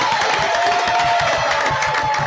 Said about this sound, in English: All righty, let's give a round of applause to our team, Ring of Honor inductees on stage here.